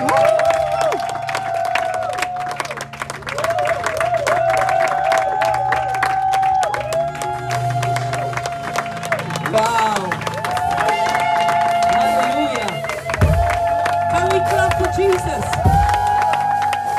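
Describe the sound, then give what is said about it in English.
A church audience claps and cheers for Jesus, dense steady applause mixed with shouting voices and sustained tones, continuing without pause for the whole stretch. “Clap for Jesus.”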